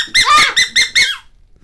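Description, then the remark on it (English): A duck call on a bellows-driven larynx model, used as a sound effect, squeaks four times in quick succession, loud and reedy with a high, nasal, quacking pitch; the bursts come in an uneven rhythm, the second one longest, then fade out. “That's my respiratory system larynx model of a bellows and a duck call.”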